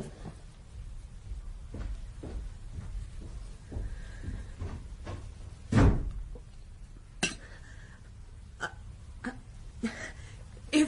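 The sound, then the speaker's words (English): A series of wooden knocks and metallic clunks, with one heavy thud near the middle, as the doors of a house in England are shut and bolted after 8 o'clock at night. “Bolt the house doors.”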